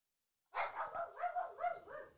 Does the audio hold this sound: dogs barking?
yes